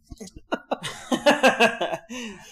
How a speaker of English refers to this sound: Say it again because I coughed in the middle of it.